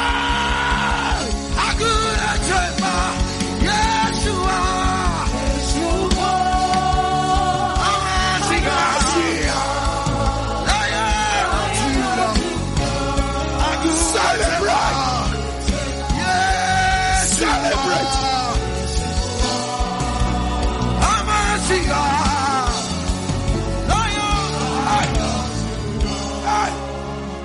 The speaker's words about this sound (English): Can you run and shout and celebrate? Yeah.